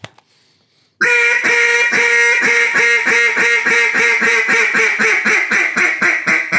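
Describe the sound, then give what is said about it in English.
A duck call blows a fast, steady string of loud, raspy quacks, hunting-style, running continuously after a second of near silence, with no talking over it. “So you could do that, but I don't think you get that rhythm of a quack to sound ducky like a hunting style.”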